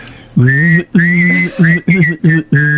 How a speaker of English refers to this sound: I have a very good whistle. Very proud. I can hear a bit of behind it, though. Do it again. Hands up who can whistle and hum at the same time. Go on.